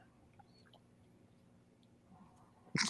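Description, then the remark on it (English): After a stretch of quiet room tone with a few faint clicks, one loud gulp of Avalanche Amber Ale bursts out right at the end. “Took a little bit of a big gulp there for the non-YouTube viewers”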